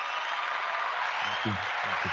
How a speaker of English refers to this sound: Way to go, Torchy's. Way to go, Torchy's. Where's that applause?